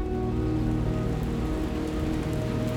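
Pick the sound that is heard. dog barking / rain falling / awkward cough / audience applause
rain falling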